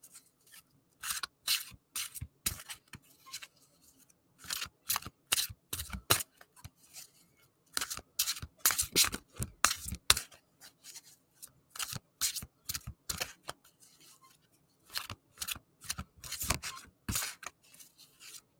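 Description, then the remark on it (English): A deck of tarot cards being shuffled before a card pull, with quick crisp papery slaps and riffles arriving in clustered bursts separated by short pauses, and no talking. “And I'm going to shuffle here, and then I'll pull the card.”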